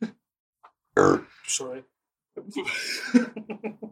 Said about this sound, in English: he's got to sit and listen to nothing but you belching 30 times